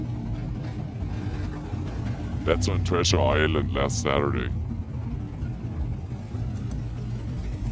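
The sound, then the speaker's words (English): Muscle car engines rumble low and steady throughout, a deep continuous growl that sits beneath a short stretch of someone talking in the middle. “I'm going on Night Woke too, but first I'm going to have some muscle cars go.”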